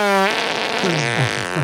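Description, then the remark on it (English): A loud, shrill fart opens with a high, tonal squeal, then breaks into a raspy, sputtering blast with wavering pitch, alone, lasting under two seconds. “Oh, screaming banshee.”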